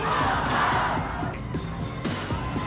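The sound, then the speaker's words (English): A large crowd at a wrestling event shouts "ho" together in a loud, dense roar in response to a call of "Everybody say ho", with a few rhythmic bursts rising above the sustained noise. “The posse's yelling ho, cause they know I'll steal the show and burn this house to the ground, rock the beat and hit the sound.”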